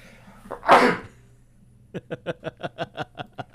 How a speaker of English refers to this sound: Bless you. Thank you. You know that that's going to be... I'm going to start that again in case you wanted to cut. I don't know if you're going to edit any of my sneeze out.